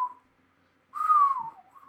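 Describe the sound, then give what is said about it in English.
Someone whistles through their lips, not a finger whistle: a brief note, a pause, then a louder sustained tone that slides downward before a softer note rises again. No talking. “I actually can't do the finger whistle thing”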